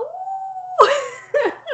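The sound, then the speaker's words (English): A person imitates a wolf howl, holding one steady mid-pitched note for nearly a second, then breaking into a louder, rougher burst and two short downward-sliding yelps. “I heard you got a little wolf howl. You wanna show the people?”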